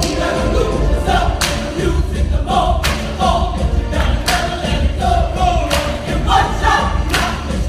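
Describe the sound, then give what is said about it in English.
A large, noisy crowd at Republican Ben Carson's campaign launch rally in Detroit, Michigan, claps steadily with thumping beats while music plays to get the crowd on its feet before he takes the stage, the rhythmic claps and cheers staying loud and dense throughout. “Carson launched in Detroit, Michigan, using music to get the crowd on its feet before he even took the stage.”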